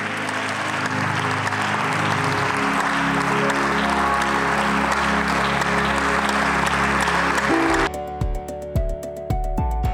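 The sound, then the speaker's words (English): An audience claps steadily in a dense, sustained burst of applause for about eight seconds over a low musical drone, in response to a preacher's call to put their hands together, then the clapping cuts off and music carries on alone. “Come on, put your hands together.”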